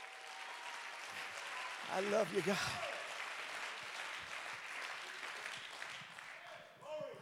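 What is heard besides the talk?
audience clapping hands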